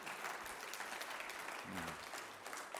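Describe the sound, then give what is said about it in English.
A church audience applauds steadily to thank members who led the church while the pastor was away, a dense, even wash of many hands clapping for a few seconds, with a faint voice briefly audible underneath partway through. “And that's not because he got me to clap before.”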